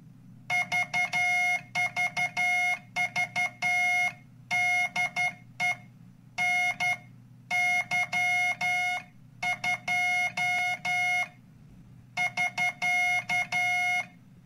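Morse code oscillator tones spelling out a person's name: a bright, buzzy beep keyed in quick short and long bursts, grouped into letters separated by brief pauses, over a steady low hum. No one speaks.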